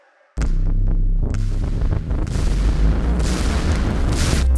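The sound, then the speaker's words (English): A loud explosion boom as a basketball player's shoe explodes on a basketball court during a state playoff game hits suddenly after a brief quiet moment, followed by several seconds of heavy, sustained low rumbling and crackling debris noise. No one speaks. “His shoe has exploded, ladies and gentlemen.”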